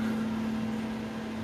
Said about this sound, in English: Oh, hello, air conditioner.